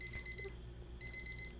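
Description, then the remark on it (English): A phone notification tone from a self-set timer beeps in a steady electronic pattern, high-pitched and fairly quiet, with a brief break before it resumes, set against a low background hum. No one speaks. “This is a notification. I mean, not a timer that I have. It's a self timer.”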